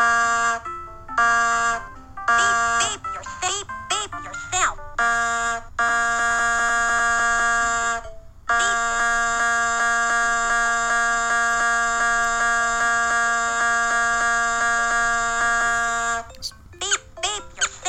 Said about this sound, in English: Alright, so obviously, down here on the dashboard, we've got our gas gauge, we've got our revometer, we've got the car's FM radio, and we've got our horn. So obviously, we need to blast a beat with our horn.